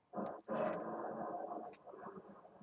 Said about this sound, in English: Bro? Yeah? Was that a train? No, paving the... It's a lot of snow outside, so... Huh. It's a snow plow.